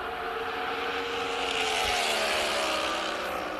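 A NASCAR next-gen race car engine roars loudly and steadily, its dense droning pitch shifting slightly as the revs change, with no voices present.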